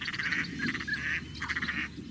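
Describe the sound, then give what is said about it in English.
Many migratory ducks call at once in a dense, overlapping chorus of nasal honks and quacks, steady throughout with a low rumbling background, on the wetlands of a refuge along the Detroit River and Lake Erie on the Michigan–Ontario border. “The refuge straddles the Mississippi and Atlantic flyways, and its wetlands, marshes, and islands host millions of migratory ducks each year.”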